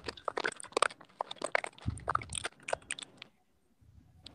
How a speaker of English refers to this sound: Man, my mic is crazy right now, man. He has some crazy crunching sounds, man.